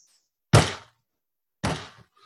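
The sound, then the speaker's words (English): Two heavy, booming thuds against wooden doors at the end of a ball, about a second apart, each landing hard and then ringing out briefly as the doors start to buckle. The pounding is loud, with silence between blows and no voices. “And you can see the doors at the end of the ball are starting to buckle.”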